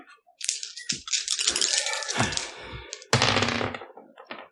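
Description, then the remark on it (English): Dice rattle and clatter across a hard tabletop in a few busy bursts, a long tumbling roll followed by a second sharp clattering throw and a brief final tap, as players roll for an opposed sense check in a tabletop game. “Can everybody roll me opposed sense, please?”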